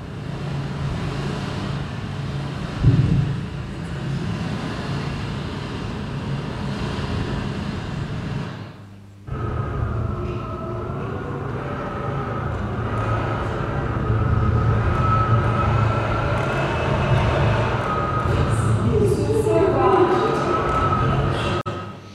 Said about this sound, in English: the most horrific storm I have ever been in my whole life came up. I cannot describe what it was like. So I have to show you a quick little video. This is us filming outside the window.